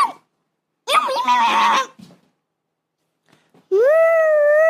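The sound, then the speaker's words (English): Children's voices in a voicemail birthday message imitate cat meows, two high, drawn-out mewing calls separated by a brief pause, with a short faint whine at the very start. “They're pretending to be cats.”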